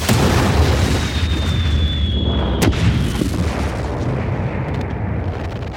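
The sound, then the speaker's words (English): A loud, sustained explosion sound effect of a spacecraft being destroyed: a deep rumbling blast with a sharp crack partway through and a faint descending whine, rolling on without any voices. “But come on, that's no good for a podcast. Cue the sound effects.”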